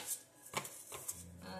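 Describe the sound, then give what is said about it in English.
A deck of jar cards being shuffled: a few quiet, papery riffling bursts and soft flicks in quick succession, with a faint low murmur toward the end. “Jar cards are shuffled.”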